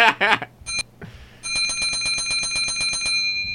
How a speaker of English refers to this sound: What is that there? This? What kind of bell is that? That's is that a restaurant?